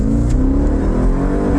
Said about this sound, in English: Can you imagine that thing on the Autobahn? Oh, it's got to be an ungodly. The exhaust note is one of my favorites of all time.